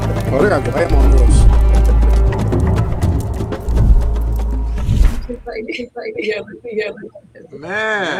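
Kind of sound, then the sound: animal, horse hooves clip-clopping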